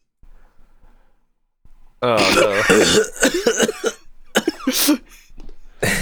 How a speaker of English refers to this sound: You start coughing at him.